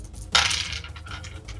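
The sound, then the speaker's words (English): Dice rolled during a game clatter onto a hard table with a sharp initial hit, then a brief trail of softer rattling taps as they settle, fairly loud, showing 14, with no one talking. “14 on the dice, and I only have a 10.”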